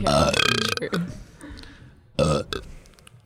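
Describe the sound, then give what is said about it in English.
A loud, drawn-out belch rumbles, then after a short lull a second, briefer burp follows, with some quiet vocal sounds in between. “Great segue. Anyway, cartoon burps.”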